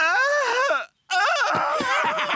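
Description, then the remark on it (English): A voice imitates the weird, high-pitched shrieking noise the cartoon character Pops makes, in two loud, wavering bursts separated by a brief pause, the second one longer and more ragged. “He makes this weird, like, shrieking.”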